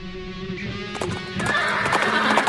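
A horse whinnies with a drawn-out, quavering neigh, then a busy clatter of hooves clip-clopping takes over, fairly loud, with no voices.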